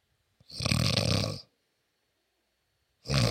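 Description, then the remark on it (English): A person imitates someone's deep snoring, made on the exhale: one long, loud, rattling snore lasting about a second, a pause, then the start of a second snore cut off at the end. “You snore different now.”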